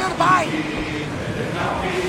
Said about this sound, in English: Yeah, so now the rowers are going at normal speed. So basically what we're hearing is the wind. We hear the resistance of the water against the hull. And now the crew is singing.